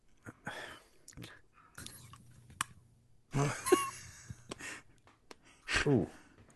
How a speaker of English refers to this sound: And you're going to chew it up and talk with your mouth full and tell us what it tastes like as you're chewing it. Yeah. Okay. Yeah, we want to hear it crunch.